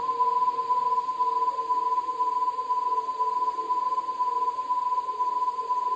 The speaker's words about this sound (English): A little bit like TV static, but also a little bit eerie, ethereal. Just two warbling notes, over and over and over. For almost 3 minutes, the noise continued, blasting through the speakers.